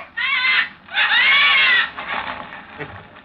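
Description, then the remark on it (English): Three harsh, drawn-out crow-like bird caws ring out loud, the second longest and strongest, the third trailing off fainter, with no talking around them. “or you'll set the birds to cawing.”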